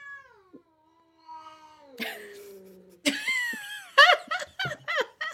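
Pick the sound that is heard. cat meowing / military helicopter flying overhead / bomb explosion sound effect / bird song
cat meowing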